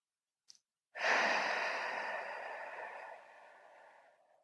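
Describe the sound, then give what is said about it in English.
A single slow, drawn-out exhale into the microphone, breathy and steady, gradually fading over a few seconds after a faint click; a person doing box breathing: in for 5, hold for 5, out for 5, hold for 5. No one speaks. “So I just did some box breathing, in for 5, hold for 5, out for 5, hold for 5.”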